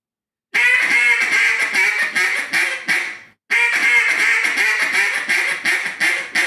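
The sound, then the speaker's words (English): A duck call blows a bouncing hen mallard sequence: two long runs of rapid, rhythmic quacks separated by a short pause, loud with no talking. “I want to hear the bouncing hen.”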